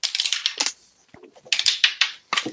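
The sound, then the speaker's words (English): Dice are rolled for a perception check, clattering and bouncing in quick, rattling bursts on a hard tabletop and in a dice tray, with a brief quieter patch of small ticks between two loud rolls. “Hey, let's try rolling that in the dice tray, please. Dice is as jumpy as me.”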